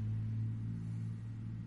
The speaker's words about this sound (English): That car... So fucking loud. Every Friday. Yeah. It can't just be what cars sound like.